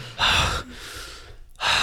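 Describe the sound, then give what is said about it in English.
A voice imitates the heavy, panting breaths of a climber taking a break with one hand on the wall: two loud, breathy gasps separated by a softer, quieter exhale, with no words spoken. “Crispin is, like, taking a break, has one hand, like, on the wall, and is breathing heavily.”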